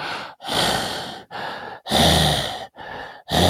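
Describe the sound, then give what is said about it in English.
A voice imitates a congested massage therapist's loud, labored mouth breathing: five heavy, rasping breaths in quick succession, alternating inhales and exhales, with no talking. “And like the entire time she's giving me the massage, she's breathing through her mouth and like really heavy breathing.”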